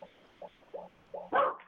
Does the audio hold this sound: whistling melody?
no